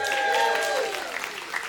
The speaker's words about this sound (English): So with that, friends, raucous round of applause cue. Let's play Bible Jeopardy.